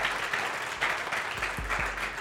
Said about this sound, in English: Come on, everybody. That'd be a good place to clap. Come on, everybody.